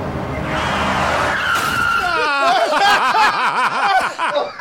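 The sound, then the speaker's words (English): A car skids loudly, starting with a rough rush of noise and then turning into a shrill, wavering tire squeal that keeps sliding up and down in pitch for several seconds, as the car hits a man. “Was that glue covering the front of this car? Because it did not knock him across the street.”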